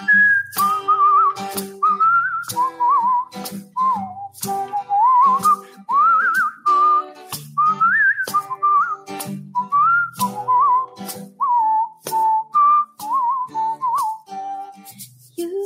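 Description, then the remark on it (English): Someone whistles a bright, bouncy melody, with clear pitch glides between notes and short breaks for breath, carrying on steadily for the whole stretch with no talking. “You whistle a while, and I'll whistle a while, then we'll whistle a while together.”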